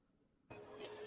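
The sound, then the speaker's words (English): A vacuum cleaner switches on abruptly after a brief quiet moment, then runs with a steady, loud, whooshing whine that fills the rest of the short clip. No one speaks. “The vacuum's coming fast and furious.”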